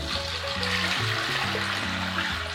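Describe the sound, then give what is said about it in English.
Water pours steadily into a pot holding 2 cups of beans, a continuous rushing splash with a faint hollow tone that shifts as the pot fills. No one speaks. “And then we're just gonna pour water.”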